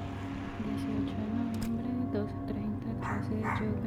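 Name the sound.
dogs barking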